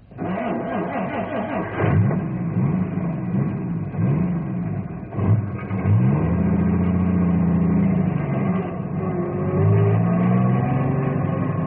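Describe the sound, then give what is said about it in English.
A heavy truck engine revs up repeatedly, its pitch rising and falling in waves, then settles into a steady roar as it pulls away. The sound is loud, with no voices. “I'm moving the truck, but not because I think I should.”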